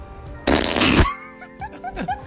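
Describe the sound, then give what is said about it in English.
A loud, flappy fart noise made by a woman blowing air into both palms cupped over her mouth, lasting about half a second, followed by quieter voiced sounds and faint chatter. “So she's putting her both of her palms on her mouth, and blowing air.”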